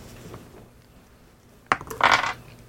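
Dice clatter onto a hard table, a sharp first knock followed by a quick burst of rattling clicks as they tumble and settle, with no talking over them. Several players are rolling dice for a mind roll in a game.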